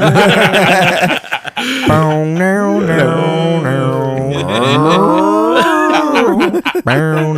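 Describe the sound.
A person imitates cows mooing, a short low moo followed by a long, drawn-out, wavering moo that rises and falls in pitch, loud and nasal.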